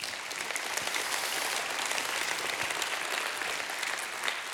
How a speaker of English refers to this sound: Someone give God a hand clap.